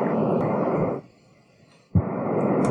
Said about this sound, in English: Let me go back to the sampling real quick. All right, some more white noise essentially.